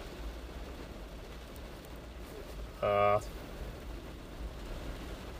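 heavy rain pouring outside

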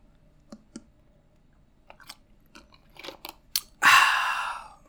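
sipping green tea

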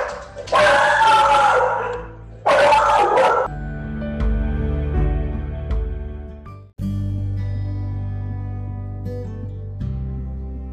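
dog barking

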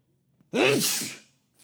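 sneeze

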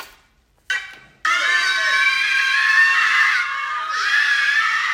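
screaming

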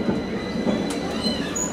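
train

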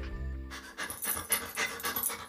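dog panting

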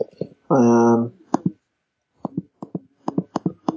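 typing on a keyboard

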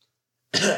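coughing

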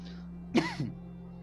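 coughing

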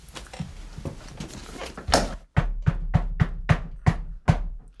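banging on a door

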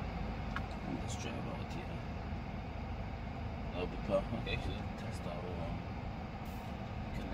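car accelerating

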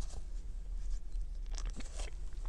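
sipping coffee

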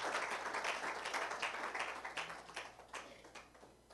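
audience clapping

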